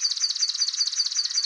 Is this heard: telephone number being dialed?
no